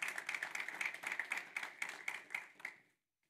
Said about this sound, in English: You can clap.